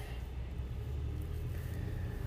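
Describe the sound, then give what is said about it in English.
A steady, low engine rumble heard from inside a car on the way home from Walmart, a constant droning hum with faint higher tones layered on top and no voices. “Just got in the car.”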